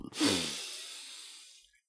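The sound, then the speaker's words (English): A brief intake followed by a long, breathy exhale, starting strong with a slight voiced sigh and gradually fading out over about a second and a half. “Take a big, deep breath in, and then let it out slowly.”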